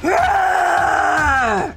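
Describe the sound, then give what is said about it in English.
A woman lets out a loud, sustained roaring battle cry as she charges into a melee fight, one unbroken yell of nearly two seconds, forceful, rising at the start and fading off at the end, with no words. “roars and charges in.”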